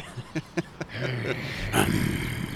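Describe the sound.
A human voice imitates a beast's growl, as voiceover for the character Beast in a film: four quick, clipped grunts, then a long, rumbling, throaty growl that swells into a harsh roar midway, fairly loud with no talking.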